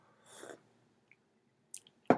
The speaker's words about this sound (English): So, time to take a slurp of coffee here.